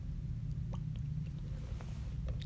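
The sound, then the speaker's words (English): Quiet sipping and swallowing of water, with a few faint wet mouth clicks spread over a couple of seconds above a steady low hum, and no talking. “Hold on, I'm going to drink some water.”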